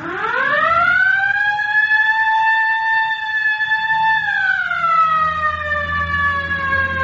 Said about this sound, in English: All right, hit the siren.